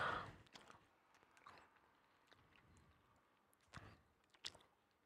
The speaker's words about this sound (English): Oh, I'm chewing right in the mic. Sorry about that.